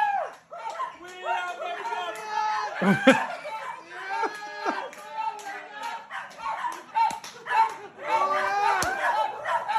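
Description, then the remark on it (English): Dogs bark and yelp repeatedly, a dense overlapping chorus mixed with other animal cries and some voices, continuing without pause throughout. “And the dogs don't like it either.”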